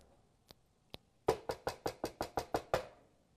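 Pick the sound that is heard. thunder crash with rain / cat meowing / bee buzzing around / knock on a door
knock on a door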